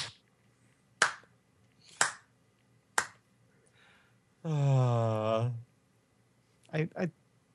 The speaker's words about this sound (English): At this point, I just get up and I start the slow clap.